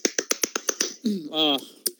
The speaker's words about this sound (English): That applause.